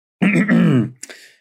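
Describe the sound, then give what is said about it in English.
A forced, strained choking noise from someone: a long voiced gagging grunt, then a short harsh cough-like burst, with no speech around it. “You're sending a cough. Giving you a forced choke.”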